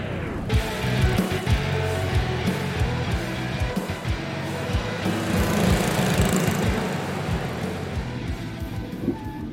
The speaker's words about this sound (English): Well, train stopping.